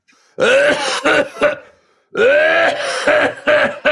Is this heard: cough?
yes